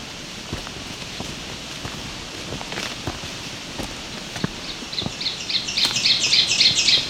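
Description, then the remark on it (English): An ovenbird, a type of warbler, sings its teacher-teacher song, a rapid series of repeated two-note phrases that build in loudness toward the end, with soft crunching footsteps and rustling underneath on a trail. No one speaks. “So, oven bird, type of warbler. Teacher, teacher, teacher is the type of mnemonic it has.”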